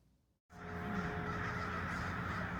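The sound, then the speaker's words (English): A dense chorus of many crows cawing at once as they swoop into downtown Sunnyvale, California, loud and continuous, beginning abruptly after a brief quiet moment and filling the air with overlapping harsh calls. “Crows suddenly bolted out of the sky as they swoop into downtown Sunnyvale, California.”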